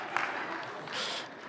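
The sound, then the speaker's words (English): A short burst of audience clapping at a church event, a dense, steady patter of many hands at moderate loudness that holds for about a second and a half, with a faint murmur of voices mixed in. “I don't know if that was Young Adults clapping.”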